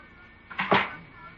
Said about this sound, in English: Close the door.